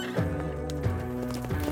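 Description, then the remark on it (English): A saddled horse, taken from a courthouse, whinnies in short, wavering bursts while hooves clop steadily beneath as its rider rides away into the evening, fairly loud, with no voices. “Going back inside, he orders the courthouse caretaker to saddle him a horse.”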